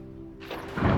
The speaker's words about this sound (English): Oh, wow. Wow. That was incredibly loud. Just when we got Arya to go to sleep. Oh. The thunder didn't wake her up. She's still asleep. Yeah, I guess she's really out. That was very loud.